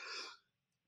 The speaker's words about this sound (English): Excuse me. Bless you. This article is making me sneeze.